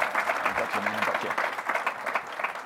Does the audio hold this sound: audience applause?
yes